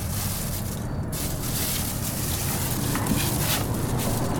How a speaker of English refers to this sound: We debunked that. That's just a loud ass car going by.